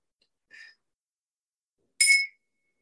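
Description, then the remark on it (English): Two bright, high metallic chimes from tingsha bells ring out during a guided meditation with no one speaking, a soft one first and then a louder strike about a second and a half later, each fading quickly. “Letting the tincture bells just kind of ripple across your energy field, cleansing, clearing, clarifying, reconnecting you fully and completely into your body.”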